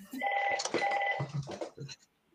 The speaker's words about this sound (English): I don't think I've ever heard this home phone ring. I was going to say. I don't even know how to do this.